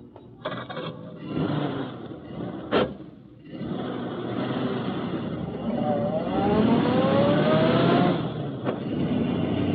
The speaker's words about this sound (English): Start the car.